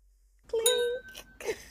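glasses clinking

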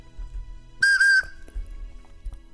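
whistle

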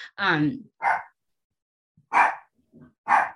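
dog barking

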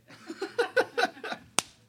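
hand slap

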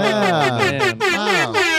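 air horn sound effect

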